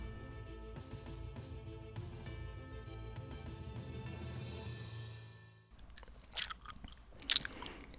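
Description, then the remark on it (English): Music plays and then cuts out, leaving loud, close-up chewing: wet, crunchy bites in irregular bursts right against the microphone, with no talking. “Can you not chew directly into the mic at this point?”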